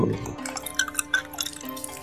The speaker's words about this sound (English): The Ouija board makes liquor pouring sounds. It does when I'm around.